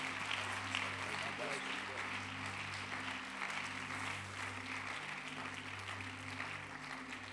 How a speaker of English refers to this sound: Let's receive him with a great big hand clap of appreciation.